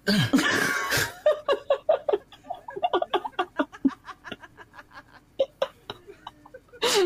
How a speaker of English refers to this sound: Oh, hold on, I'm going to sneeze. Oh. Hate that. Oh, man, I can't do it.